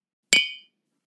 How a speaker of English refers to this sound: So we toast to them. Cheers. Cheers.